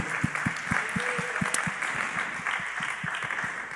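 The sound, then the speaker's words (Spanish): An audience applauds the Lord in a dense, sustained wash of clapping, fairly loud and continuous, with a steady rhythmic low thump running underneath throughout. “Aplausos al Señor, por favor, por un momento.”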